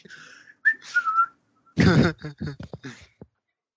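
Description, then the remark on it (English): A person whistles a brief, sliding tune for about a second while waving a new machete around, then a loud burst of wordless voice sounds follows, breaking into short rhythmic pulses before fading. “Whistling and waving my machete, my new machete around.”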